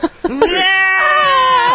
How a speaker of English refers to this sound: All right, screaming in pain is a way of winning an argument.